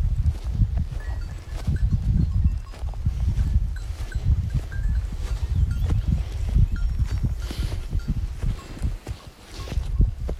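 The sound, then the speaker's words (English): A herd of slow-moving goats walks along a trail, hooves shuffling and clopping irregularly over a steady low rumble, with occasional faint bleats and scrapes. “I'm just trying to follow the goats now. They're very slow and they don't seem to have a care about the world.”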